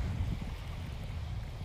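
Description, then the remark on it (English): Atlantic Ocean waves wash steadily against the shore as the low tide comes in, in a continuous low, rumbling surge, with a faint breezy hiss over it and no voices. “And this tide is coming in now.”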